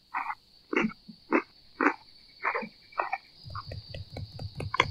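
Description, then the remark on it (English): At night with no wind, crickets chirp in a steady, high-pitched trill throughout, while louder croaking calls repeat roughly twice a second over it, turning quicker and denser toward the end. No one speaks. “How's the background sound tonight? It's quite crickety, but it's not windy.”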